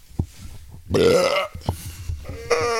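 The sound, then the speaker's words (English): A drawn-out yawn with a rough, belch-like croak, loud, followed after a short pause by a second throaty vocal sound; soft thumps come before it and between. “I thought you were going to belch, but you yawned.”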